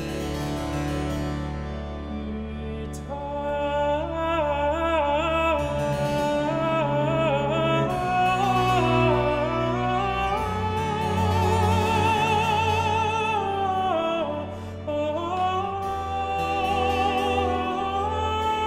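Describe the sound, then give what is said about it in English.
A baroque aria by Handel, a royal commission, with a high, vibrato-rich countertenor voice soaring over a bright trumpet line and sustained string accompaniment, full and steady in volume throughout. “Basically, it's an aria for strings, trumpet and singer, originally a tenor, often an alto, and now famously a soprano, as when it was performed with Meghan Markle walking down the aisle at the royal wedding.”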